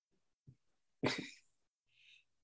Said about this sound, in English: No, I'm in my office coughing from COVID.